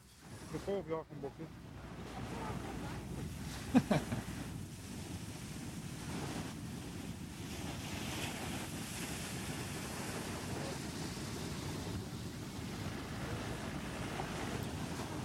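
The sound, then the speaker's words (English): Ocean waves surge and crash in a loud, continuous roar with heavy wind buffeting the microphone, one sharper impact standing out early on, and a brief voice near the start, as people run from a wave. “They definitely are running from this wave.”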